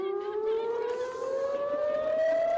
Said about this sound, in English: Family members of the hostages held a press conference in Tel Aviv, but people were forced to evacuate due to the sound of sirens and explosions overhead.